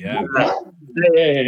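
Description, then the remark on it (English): A dog lets out two short, strained vocal bursts, a mix of barking and whimpering with a brief pause between them, reacting to fireworks going off. “I always forget that dogs react to the fireworks.”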